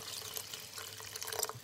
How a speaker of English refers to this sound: So we're just going to add a cup of water.